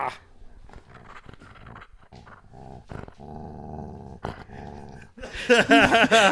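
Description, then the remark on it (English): A feisty female dog growls while playing, in low, rumbling bursts that build into louder, higher-pitched snarling and yappy play noises toward the end, with no talking over it. “You're playing with the dog because she's feisty.”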